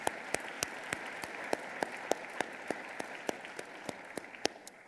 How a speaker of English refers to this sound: Round of applause for this band. What a wonderful job.